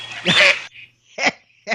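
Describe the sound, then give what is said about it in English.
A duck sound effect: one long, loud, nasal quack followed by two shorter, quieter quacks, each with a raspy, buzzy tone and brief gaps between them. “And they sit there and say, all we're doing is providing useful information and relevant news and not like Guy and Gaz, who on occasion will have duck sounds.”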